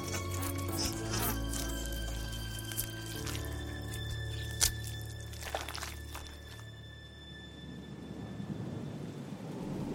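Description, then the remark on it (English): A dense, wet chorus of many mouths chewing fruit tossed into a hole beneath a furnace: continuous squelching and crackling over a low rumble, with a few sharper bursts, thinning out and fading over the last few seconds. No one speaks. “From inside, the sound of many mouths chewing.”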